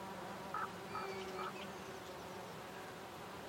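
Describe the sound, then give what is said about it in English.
A steady, low drone of several bees buzzing around nearby clumps of wood sage on an open hillside at sunrise, continuous throughout, with a few faint high chirps briefly rising above the hum near the start. “And actually focus low this time with my microphones, as I'm noticing grasses and nearby clumps of what I realise is wood sage covered with frenetic bee activity.”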